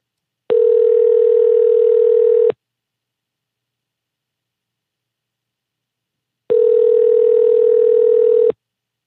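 An outgoing phone call ringing on the line: two steady, buzzy ringback tones, each about two seconds long, separated by a long silent pause. Clear and fairly loud, with no voices.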